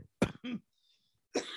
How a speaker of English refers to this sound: My God, this cough just needs to fuck off.